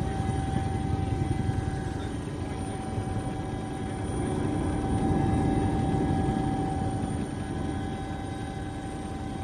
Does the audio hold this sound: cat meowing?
no